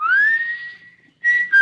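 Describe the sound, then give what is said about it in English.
A man whistles a signal: a single clear whistle glides upward and holds a long steady note, then after a brief pause two shorter whistled notes follow, loud with no talking. “And you could stand in the orchard until you heard him whistle.”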